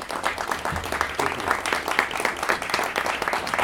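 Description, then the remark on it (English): An audience applauds a panel with dense, steady clapping that sustains at an even loudness for several seconds, a crackling wash of many hands with no voices standing out. “And let's give the panel a round of applause.”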